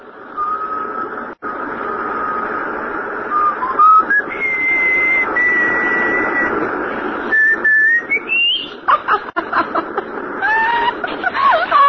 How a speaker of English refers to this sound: Can you whistle? Sure. Whistle. Yeah, I know just the tune.